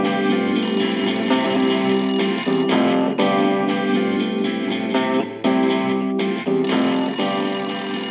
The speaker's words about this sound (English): God, answer the phone.